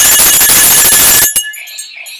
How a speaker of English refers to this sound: Oh my God, where's my violin noisemaker thing? Here's the bell. Chicken alert!